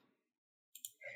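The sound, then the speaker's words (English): Dice clatter onto a table for an intellect roll: two sharp clicks in quick succession, then a brief rattling tumble, right after a voice trails off into silence. “Why don't both of you roll intellect?”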